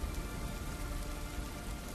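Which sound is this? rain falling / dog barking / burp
rain falling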